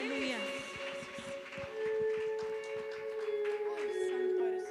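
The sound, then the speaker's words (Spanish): A crowd claps along in quick, uneven bursts, applauding the King during Spanish-language worship singing, beneath sustained keyboard chords and a singing or speaking voice, the claps steady throughout the passage. “Dale fuerte el aplauso al Rey, que se escuche.”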